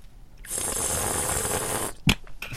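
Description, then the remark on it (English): A loud, drawn-out airy slurp lasting over a second, as someone sucks air through a sip of wine, followed by a brief sharp click and a short sniff. “And then you want to do that slurpy thing.”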